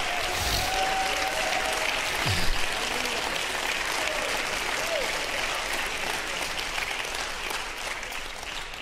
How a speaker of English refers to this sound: Somebody clap like you mean it.